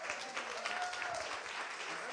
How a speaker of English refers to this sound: Give her a cheer.